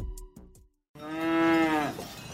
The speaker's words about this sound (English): I appreciate that beginning a business podcast up a mountain with some cows is an unusual start, but then some CEOs have unusual starts.